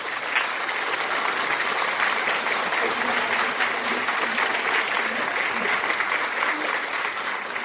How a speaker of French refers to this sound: My brother, my sister, applaud for the Holy Ghost. Applaud for the Holy Ghost.